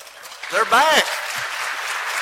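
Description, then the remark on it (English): A gathering of people clapping steadily, a dense patter of applause for a newly married couple being welcomed home, with a voice briefly calling out over it near the start. “Come on now, y'all got to stand so we can all give you applause.”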